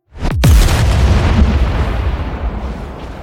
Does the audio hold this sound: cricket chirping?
no